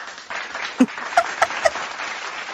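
A short burst of applause from a small group, a steady noisy patter with a few louder, sharper claps standing out through the middle. No one speaks over it.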